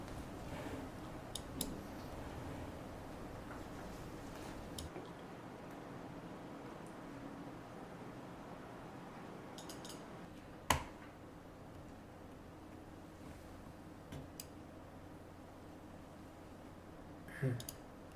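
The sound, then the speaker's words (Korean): Sharp, isolated computer mouse clicks come every few seconds, some single and some in quick pairs, over a low steady room hum. No voices are clear. “그거 마우스 좀 조용히.”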